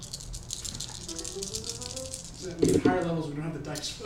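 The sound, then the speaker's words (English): Six-sided dice rattle and clatter in a dice cup for a few seconds, rolled for a first-level spell, a rapid hard clicking that swells louder toward the end, with people talking underneath. “That's what the dice cup is for.”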